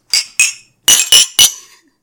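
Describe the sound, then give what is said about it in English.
Glasses of cider clink together in a toast: two bright, ringing taps, a short pause, then three more in quick succession, each chime sharp and fading with a brief glassy ring. “Everyone, cheers. Cheers.”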